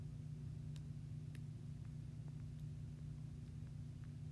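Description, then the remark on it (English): A bus engine idles in a video game while the player camps in the bus, a steady low droning rumble that holds evenly throughout, fairly quiet, with a few faint ticks scattered over it and no voices. “I found a bus. So I'm just gonna bus camp here.”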